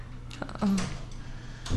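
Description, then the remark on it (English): A door in a house creaks open, played from a soundboard: a few sharp clicks of the latch followed by a short, low groaning squeak, then a faint final knock, with a steady low hum underneath. “Yeah, we're in a house. Doors creaking.”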